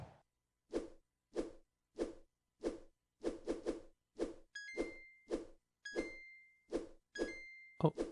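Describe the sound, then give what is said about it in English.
Flappy Bird point chimes: four bright, ringing dings, each a point scored as the bird passes through a gate, cut in over a steady, rhythmic run of short swooshing flap sounds from the game, with no talking. “You heard four dings, four chimes. Those chimes were points. They were gates that I got my Flappy Bird through.”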